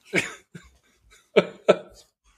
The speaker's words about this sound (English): Well, I'm in a laughing, coughing fit.